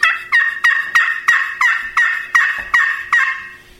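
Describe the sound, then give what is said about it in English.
A rapid series of about ten turkey yelps scratched out on a glass friction call, evenly spaced and ringing bright and loud, each note sharp and raspy, with no talking. “This is a glass call. It's a ring zone. And, you know, basically when a turkey yelps, it's just letting other turkeys know where they're at.”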